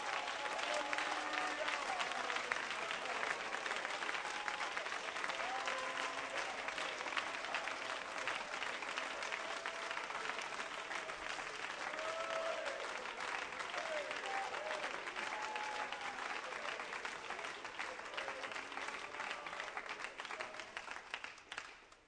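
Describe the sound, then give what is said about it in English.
A crowd claps steadily for about twenty seconds, a dense, even wash of many hands with faint voices and cheers mixed underneath, fading slightly at the very end. “Won't you clap your hands? That's what it sounds like.”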